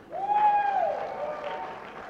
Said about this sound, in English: Come on, let's give him a clap.